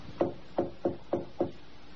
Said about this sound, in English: And now, in explaining and filling out his notes on the Musgrave ritual, he'd left Watson waiting while he filled his pipe before picking up the narrative where he'd left off, with a soft tapping on Rachel Howell's door in the dead of night.